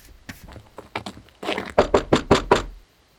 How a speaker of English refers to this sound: It's locked. We've done this before. Ugh, this is so aggravating. Why is everything closed? Just try knocking.